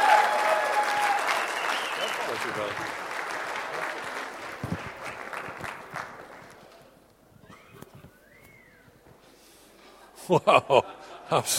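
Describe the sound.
A crowd claps in a sustained round of applause that gradually fades out, followed by a few brief voiced exclamations and some scattered loud claps near the end.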